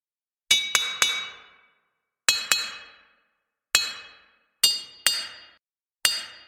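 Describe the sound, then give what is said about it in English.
Loud, sharp clicks heard from inside a city, like a rock striking something hard. There are about nine in random, uneven clusters of one to three, each with a brief ringing decay and slightly different tones. No voices. “From inside the city, every once in a while, you will hear a loud clicking sound. And they come in a couple different tones.”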